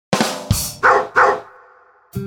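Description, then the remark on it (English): A dog barks four times in quick succession, loud, followed by a brief pause before one more bark starts at the end. “Dogs bark for a lot of reasons.”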